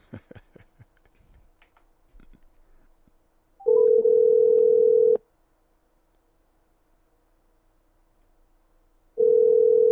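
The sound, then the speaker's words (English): A few quick taps of dialing, then the steady electronic ringback tone of an outgoing prank phone call to a friend: a loud, even ring lasting over a second, a long silent pause, and the ring starting again. “Let's see if he answers. Hold on, let's call him. Prank call time.”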